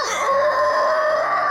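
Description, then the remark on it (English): A voice imitates the scream of the Kraken: one loud, sustained, strained shriek with a steady high pitch and harsh rasp, lasting over a second and a half with no words. “The Kraken screams at this point,”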